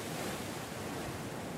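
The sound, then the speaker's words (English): A steady, loud roar of wild ocean surf churning against sharp rocks far below a sheer cliff, a continuous wash of white water with no distinct individual crashes, and no voices. “And far, far below you, the wild ocean, churning swells, white water and sharp rocks.”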